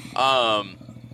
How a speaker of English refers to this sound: There goes Hound Dog, boys. Hey, Hound Dog's on his way out, if you can hear that tractor going.